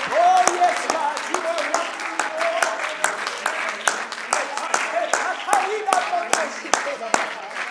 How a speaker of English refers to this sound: And why don't you clap your hands and shout unto God one more time before you are seated.